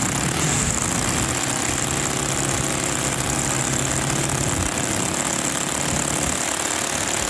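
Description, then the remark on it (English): A loud, steady aircraft engine runs continuously, a dense rumbling roar with a sustained high whine and no voices over it. “And that's going to sound much better in real life when it's on an airplane.”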